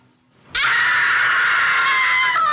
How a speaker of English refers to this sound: But she does do the wife scream. She's seen something.